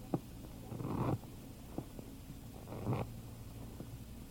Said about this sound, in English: Well, I got this pile of chips, and it says you've lost your nerve. Shuffle the cards, Mr. Trumbo.